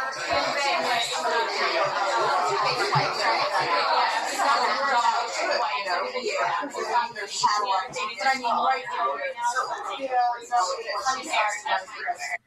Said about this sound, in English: So this is what it sounds like at every work function ever.